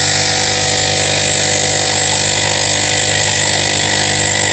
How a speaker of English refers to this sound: I think I know what it is. A coffee maker. Well done, you guessed it.